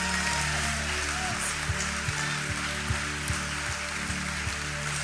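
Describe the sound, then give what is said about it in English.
A dense, steady wash of applause from a church audience clapping as praise to God during a service, a continuous hiss of many hands clapping together at even loudness, with faint low tones sustained underneath. “Let's lift up one more hand clap of praise to our God who is so worthy.”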